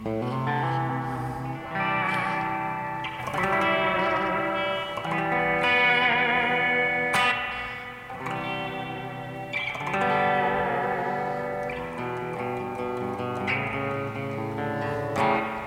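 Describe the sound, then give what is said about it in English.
Electric guitar played through a Spring King reverb pedal, sounding chords roughly every two seconds whose washy tails blur into one another, steady and fairly loud with no talking. “I'm going to move to a different reverb for the delay.”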